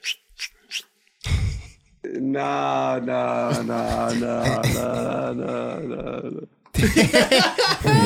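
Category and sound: human body sound, fart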